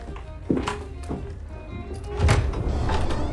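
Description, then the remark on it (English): A door is pulled open with a few dull thunks and knocks spread over a few seconds, followed by a low rumbling shuffle as it swings; no one speaks. “Whoa, that is a big cupboard. No, not that door.”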